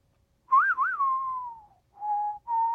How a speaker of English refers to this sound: I don't know anything about real whistling, including, it turns out, how we feel when we do whistle. When you're whistling, it's kind of impossible to be sad.